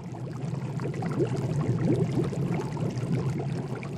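A pot of water boiling a wild sprout, with a dense, continuous bubbling and many small popping blips over a low rumble, holding an even level throughout without any voices.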